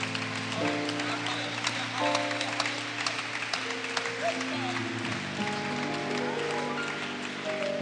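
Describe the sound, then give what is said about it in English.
A church audience claps in praise of the Lord during a morning service, a dense, continuous wash of many hands that stays loud throughout, with held keyboard chords shifting underneath and voices calling out in the mix. “Why don't you give the Lord a mighty hand clap of praise this morning?”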